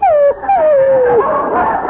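A dog whimpers, two drawn-out whines sliding downward in pitch, followed by a rougher, fluttering burst of yipping whines. The sound is loud and clear, with no talking.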